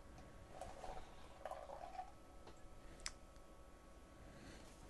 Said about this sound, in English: I tried to pour gently, but it roused the yeast as I was getting to the bottom.